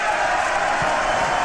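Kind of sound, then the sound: crowd, rally crowd reacting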